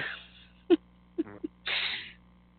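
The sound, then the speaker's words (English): A person blows a fart noise with their mouth: a few short, wet pops followed by a longer, hissy, breathy sputter, with no talking. “It's a fart noise with my mouth.”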